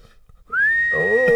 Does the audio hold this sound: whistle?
yes